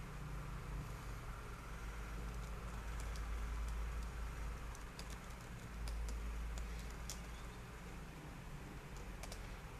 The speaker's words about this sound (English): I don't know if you guys can hear the keyboard, but I'm currently typing.